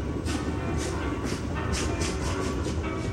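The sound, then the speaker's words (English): A train bound for California rolls steadily along the tracks, its constant low rumble broken by a regular series of rhythmic clacks as the wheels pass over rail joints, fairly loud. “When they bought her a ticket to California, Ayn Rand was more than happy to board the train.”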